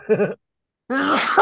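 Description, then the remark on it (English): A loud sneeze: a short wavering vocal build-up, a brief pause, then a sharp, noisy burst that trails off with a voiced tail. There is no talking. “Bless the shit out of your sneeze, taking no prisoners.”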